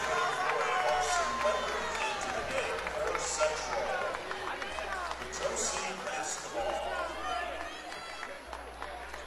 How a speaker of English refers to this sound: As you can feel the cheer shift in the crowd as he makes that first one.